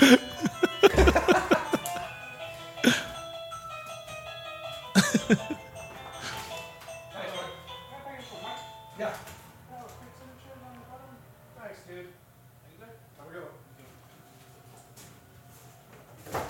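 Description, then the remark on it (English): An electronic doorbell, rung by a FedEx delivery man, plays a bright, tinkling chime melody with sustained ringing tones, punctuated by a couple of sharp loud bursts, while muffled voices and noises carry on underneath. “Super annoying doorbell.”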